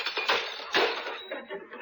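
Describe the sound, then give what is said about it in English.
Three dishes being juggled crash and shatter in two loud bursts in quick succession, followed by a scatter of smaller clinks and rattles as pieces settle. “Here, I'll take these three dishes and show you. Now, watch this." "Now you'll break them.”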